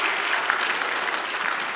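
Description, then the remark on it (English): A church audience claps their hands together one time, many hands at once in a dense, steady burst lasting about two seconds with no voices over it. “Well, why don't you just clap your hands one time?”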